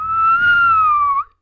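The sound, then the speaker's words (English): A person whistles one clear, steady note for just over a second, imitating a bird's clear whistle, ending with a slight upward flick before silence. Fairly loud, with no talking. “As well as a clear whistle.”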